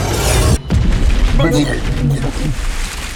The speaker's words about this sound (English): Reaching deep into my inner core, I activated my Brahman Shakti and hurled a bolt of energy at the dwarf, sending him flying into the water.